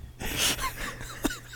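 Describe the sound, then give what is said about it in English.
A person yawns: a breathy, drawn-out inhale that trails into a soft, wavering vocal moan before ending with a brief catch of breath. “Sometimes when people yawn, they sound like a Homestar Runner character.”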